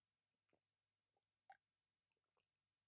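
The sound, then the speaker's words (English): Someone sips a pink grapefruit squash drink: a few quiet wet mouth clicks and gulps spread over a few seconds, one sharper swallow in the middle, with no talking. “I'm just going to take a sip of my pink grapefruit squash.”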